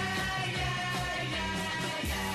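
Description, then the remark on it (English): A dense, continuous wall of high-pitched screaming from teenage fans, loud and unbroken, mixed with a band playing underneath with a steady bass line. “Cue the screaming teenagers.”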